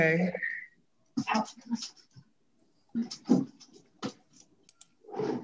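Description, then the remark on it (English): A dog gives a short, high whimper at the start, followed by several bursts of scratching and rustling with brief quiet gaps between them. “This dog is gonna be a little crazy.”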